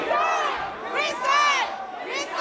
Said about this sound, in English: A crowd of mostly African-American and Latino protesters packed the chamber and angrily called for the resignations of the three Latino members who were caught on tape making racist and crude comments.